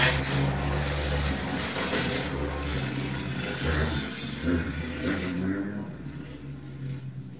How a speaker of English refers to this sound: For the motorcycles to pass.